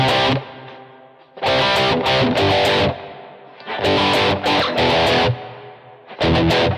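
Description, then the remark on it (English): Loud, distorted electric guitar chords strummed in short rhythmic bursts, each group of quick strums followed by a ringing pause as the chords are left to drone before the next pattern starts again. “And then the next question is, okay, so what else can I do with the rhythm of it, right? I'm just letting them all drone right now.”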